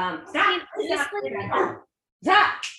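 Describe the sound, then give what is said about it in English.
A dog barks and yips in a few short bursts, with a brief pause before one last loud bark. The sounds are fairly loud. “Well, the one thing that has to give is this podcast because my dog's about to eat my legs.”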